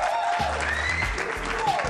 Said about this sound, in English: A round of applause.